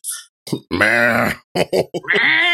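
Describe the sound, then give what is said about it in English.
A person imitates a raspy cat, letting out a long, gravelly, strained yowl between short grunting bursts, ending on another drawn-out hoarse meow. “This is what he sounds like.”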